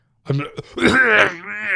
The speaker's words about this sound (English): Dude, I thought when I was going in yesterday to the stores, my wife's like, just start coughing.